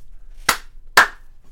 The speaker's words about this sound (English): All lights are clap-on lights in the year 3042.